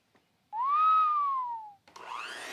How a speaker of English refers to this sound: I always love that Foley on the motor turning. Yeah, you can hear the motor going as it's stuck in place. That's good Foley, yeah.